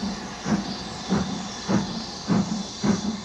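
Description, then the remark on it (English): A steam locomotive pulling the yellow mail train chuffs steadily over a constant hiss of steam, about five heavy exhaust beats in an even, unhurried rhythm as the engineer opens it a notch and the engine gets moving. No one speaks. “The engineer opened a notch, and the yellow mail began to roll again, a minute to the good.”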